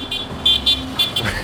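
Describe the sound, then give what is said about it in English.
Street traffic on Club Road in the Punjabi Bagh neighborhood rumbles on a hot morning, heard from the middle of the road where there is no sidewalk, with a steady low engine drone and several short, bright horn toots or high tonal chirps cutting through at intervals. “There's not really a sidewalk here, so we're just in the middle of oncoming traffic.”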